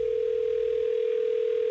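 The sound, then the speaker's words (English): A steady, unbroken telephone line tone hums loudly and evenly for the whole moment, a single clear pitch with no voices over it, as the Hot 101.5 radio show in Tampa Bay places a call. “Let's get her on the phone.”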